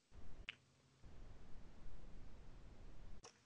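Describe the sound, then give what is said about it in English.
Two sharp, crisp computer mouse clicks about three seconds apart, distinct, over a low steady rumble of background noise. “Just clicking around.”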